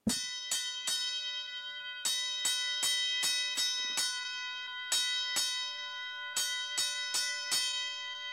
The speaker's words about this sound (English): And now we have here a fire alarm with a big announcement.